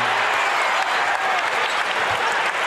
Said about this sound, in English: Utah 96, Chicago 93, two to play. Crowd chanting, let's go Bulls.